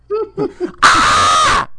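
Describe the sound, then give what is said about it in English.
A person's voice makes a few short vocal sounds, then lets out one long, loud, harsh squawk, imitating a honking bird for nearly a second. “You were literally squawking in my ear for 4 hours.”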